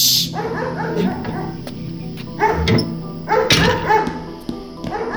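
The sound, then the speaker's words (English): A dog barks and yips in several insistent bursts spread over a few seconds, with whiny, whimpering tones between them and no one speaking. “They left their new doggy home alone.”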